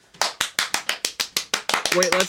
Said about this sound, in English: Wait, one more. Claps to sync. 1, 2, 3.